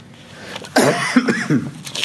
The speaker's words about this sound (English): Terribly sorry about my cough.